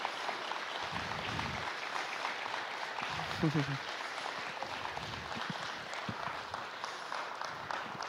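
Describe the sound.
A crowd claps steadily for about eight seconds to honor a woman in the morning, a dense, even wash of many hands at a constant moderate loudness, with a brief murmur of voices partway through.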